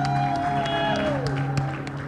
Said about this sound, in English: With a resounding round of applause, let's welcome ….